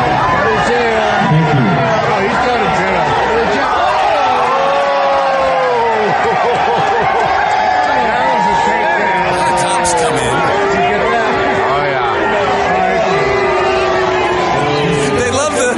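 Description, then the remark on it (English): A large crowd in the Family Fun Zone erupts into loud, sustained shouting and booing as a man is tackled by a dad with two daughters. Many overlapping voices rise and fall together in a dense roar that carries on steadily, booing the cops who come over to get him. “You're going to hear the crowd erupt as”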